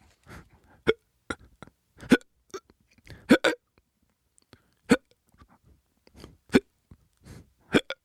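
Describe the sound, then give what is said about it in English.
A voice imitates hiccups, producing a series of short, sharp hic sounds at irregular intervals, about a dozen over several seconds, fairly loud with quiet gaps between. “Dude, he was probably one of those dudes that wasn't interesting at all, period, ever, to anybody, and decided that, hey, maybe I'll just act like I have hiccups for 500 years.”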